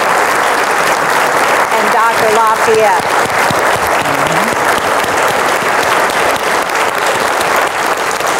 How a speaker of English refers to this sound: If you all would, please help me give a round of applause to Ambassador Rao.